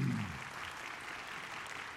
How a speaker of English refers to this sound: they've never clapped for me twice, and I've been here 26 years.